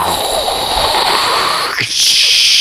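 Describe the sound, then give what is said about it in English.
A blowtorch roars with a loud, steady hiss as it caramelizes a crème brûlée; near the end the flame's rushing sound briefly dips and shifts to a sharper, higher hiss. “why are you blowtorching a creme brulee while you're...”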